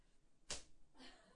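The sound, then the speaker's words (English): A single soft, weak punch lands on a body with a brief, dull smack, followed by faint rustling. “That was pretty weak. Yeah, you got me like right here. I didn't hit you quite right.”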